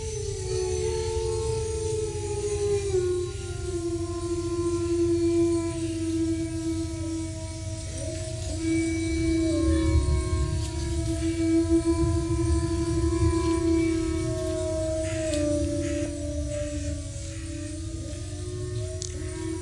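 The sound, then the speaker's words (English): Wolves howl in long, drawn-out, overlapping tones that hold steady and slowly waver in pitch for the whole stretch, over a constant low rumbling background. “They use that howl to locate one another in the dark or in a storm.”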